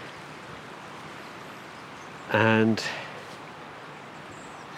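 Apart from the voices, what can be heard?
flowing river stream water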